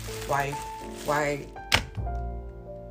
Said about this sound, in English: Okay, so I'm just going to butter. I'm going to butter my bread in prep for putting my eggs in. I'm done with frying my eggs now, just to give you a bit of context, okay?